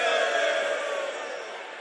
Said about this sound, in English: We have Adabraka. Where? Adabraka people are shouting.